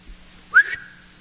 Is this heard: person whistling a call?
yes